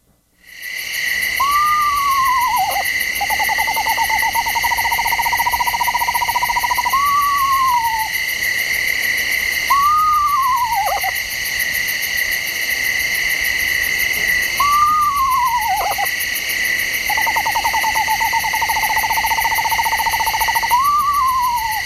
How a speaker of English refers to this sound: So here's the screech owl. And by the way, screech owls don't screech. They never screech, so I don't know why they call them that. Okay. Eastern screech owl.